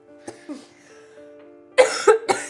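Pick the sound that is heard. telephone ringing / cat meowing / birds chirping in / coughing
coughing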